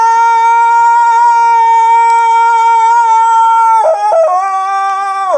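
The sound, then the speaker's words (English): A special bird call played from a cassette to call birds in for feeding at Union: one long, steady, high-pitched tone rich in harmonics, held loudly for several seconds before it wavers and breaks into a few quick pitch shifts. “But so a special bird call or something like that? Yeah, you could say that. We have to call them.”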